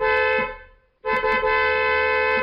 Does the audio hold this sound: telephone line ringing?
no